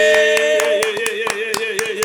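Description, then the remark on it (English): Sharp, evenly spaced claps ring out in a steady rhythm, about four per second, over a sustained, bright musical tone that plays throughout, a round of applause for a female artist from New York City. “But round of applause for one of the number one female artists in New York City.”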